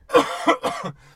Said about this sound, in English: That's made you cough with horror. So important to always hear, oh my God, I'm dying. Oh no, do you need water?